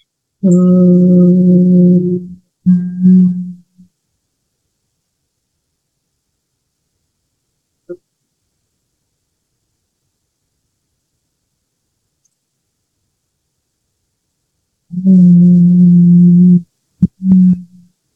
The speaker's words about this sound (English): And then take another mini inhale. Hold it for a couple of seconds and slowly and with great control, hum it out.